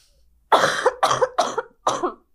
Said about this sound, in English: I have to cough really bad.